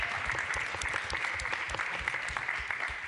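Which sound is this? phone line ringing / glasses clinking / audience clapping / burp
audience clapping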